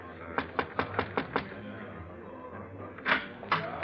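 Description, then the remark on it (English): A quick run of about six crisp knocks on a door, followed after a pause by two heavier, louder thumps, over a low room hum. “Just knock on the door, monsieur.”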